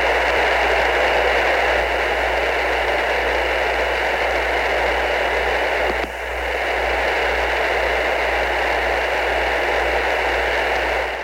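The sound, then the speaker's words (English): Steady, loud hiss of static on a spaceflight radio line fills the whole stretch, a dense unbroken wash of noise over a low electrical hum, with one brief dropout midway and no voices. “A long period of hissing noise filled the line as the Inco, down on the second row, consulted with his back room.”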